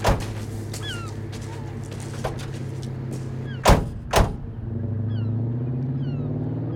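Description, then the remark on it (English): Car doors shut twice in quick succession as people get into a car, two solid thuds about half a second apart, over the low steady hum of an idling engine, with faint chirps in the background. “Come on, get in the car.”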